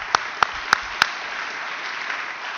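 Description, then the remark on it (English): An audience at a conference applauds in a steady, diffuse patter, with four sharp, evenly spaced claps at the start before the clapping carries on more softly. “Just a quick round of applause.”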